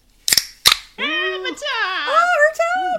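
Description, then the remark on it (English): Two sharp metallic cracks in quick succession as the tab of a can of Liquid Death Mountain Water (still water) is popped open, followed right after by a long, sliding voiced exclamation from a person. “I'm going to pop my top.”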